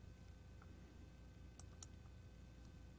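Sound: computer mouse clicking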